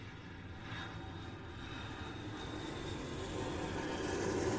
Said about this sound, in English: And, one second, there's a plane flying over my head.